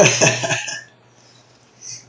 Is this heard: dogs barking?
no